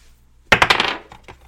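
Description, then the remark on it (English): Dice clatter across a hard surface during a board game: a quick burst of sharp, rattling clicks, then two softer, separate taps as they settle. No voices. “Do you have the dice?”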